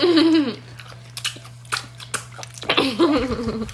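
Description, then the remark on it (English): Crisp crunching and wet chewing of a spicy pickle, a few irregular bites in the middle, framed by a short voiced murmur at the start and end. “Spicy pickles are good. This weirdly just turned into an ASMR.”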